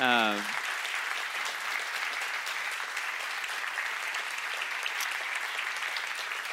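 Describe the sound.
A crowd bursts into steady, sustained applause, a dense patter of many hands clapping at even loudness throughout, with a brief voice heard only at the very start.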